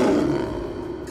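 A panther lets out a single deep, rumbling roar, loud, sustained for about a second before easing off slightly, with no voices around it.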